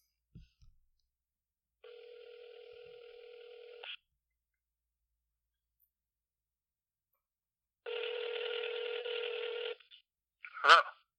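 A phone call from the Sports Buzz show to a guest connecting: a faint click, then two long electronic ringback tones separated by silence, ending in a short sharp burst as the line picks up. No one speaks.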